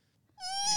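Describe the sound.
A person imitates a horse neigh with a single short, high-pitched, strained vocal whinny that starts abruptly after a moment of near silence, fairly loud, with no talking.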